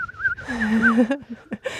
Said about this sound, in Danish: Og der var der en nattergøl, der sang forleden dag. Nej. Ja. Okay. Tror det eller ej. Så har vi lige lagt en tone anden for programmet, tror jeg. Ja, den lyder sådan.